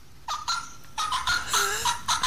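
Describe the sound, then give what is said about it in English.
A turkey gobble used as a phone ringtone: a series of rapid, rattling bursts with a warbling high pitch, loud and alone with no talking, ending in a final short gobble. “A turkey!”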